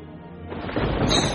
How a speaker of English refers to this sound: Thunderous crack is heard in the sky above. People start screaming. Lightning crashes into the building near you.